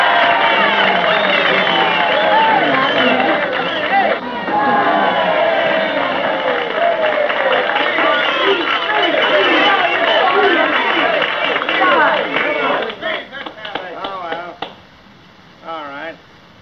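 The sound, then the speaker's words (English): At a banquet, a large crowd cheers and hollers loudly together, a dense mass of overlapping voices, with scattered clapping coming through near the end before the noise thins out and fades. “Come on, everybody, clap like that!”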